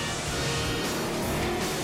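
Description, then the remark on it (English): The engine of a green Jaguar sports car, the villain's car from a Bond film fitted with front-firing missiles and a mounted machine gun, roars steadily and fairly loud for a couple of seconds, a continuous rumble with a broad hiss of road and exhaust noise, no voices. “It's a little odd to see a green Jaguar with a machine gun mounted on the back driving through the cornfields of rural Illinois.”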